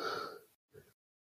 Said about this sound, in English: Oh shit! I don't know why I'm yawning today.